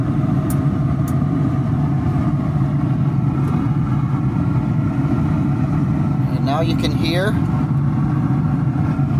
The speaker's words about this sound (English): Let me see if you can hear this roaring. Yes, the wood has caught fire. I'm going to leave this open just for a minute so you can hear as I turn the temperature up two notches to 225. I'm turning the control knob now.